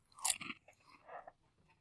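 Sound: crunching on potato chips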